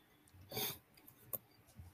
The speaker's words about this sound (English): Sorry. I'm battling this cough, which was fucking sucks, by the way.